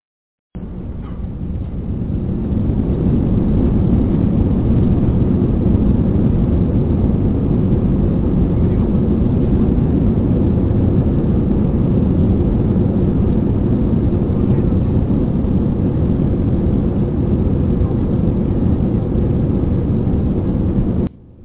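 A loud, sustained airplane engine roar builds over the first couple of seconds and holds steady, a dense low rumble of a plane taking off, with no one speaking.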